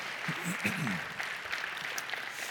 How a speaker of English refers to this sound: Thank you. Could you give her a round of applause?